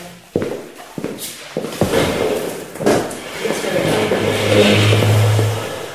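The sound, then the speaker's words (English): A chair is dragged across a hard floor as someone pulls it over, with a few knocks and bumps followed by a long, grinding scrape that ends in a low groaning squeal, fairly loud. “I'm going to pull this over because I'll have a hard time getting it.”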